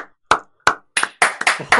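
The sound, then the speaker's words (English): Hands clap, starting with two slow, spaced claps and then breaking into a quicker, uneven run of clapping. The timing is awkward and irregular, with no talking. “Extra long, awkward clap for that one.”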